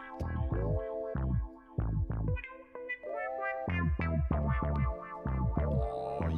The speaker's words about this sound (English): I got him to bust out your lyrics. Excellent. And I put it to a fresh dope and dope fresh beat.